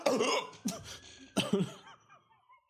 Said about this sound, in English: Oh my God, I have the hiccups.